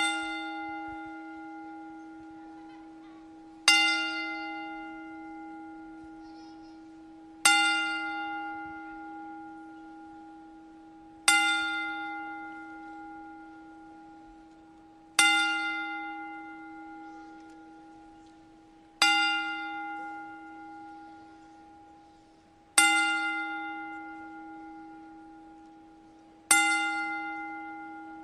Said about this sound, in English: we'd like to pay tribute to New Jack with a 10-bell salute